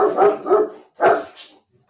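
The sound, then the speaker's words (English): A female dog barks three times in quick succession, fairly loud, with the third bark trailing into a short higher yip before silence. “She's just telling all the dogs listening how you can follow us across social media and make sure that you subscribe.”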